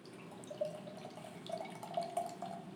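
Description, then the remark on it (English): A drink pours steadily into a glass, a continuous liquid stream with bubbling, rising gurgles and no voices over it. “Nice little pour there, you know? So, while I'm getting this poured”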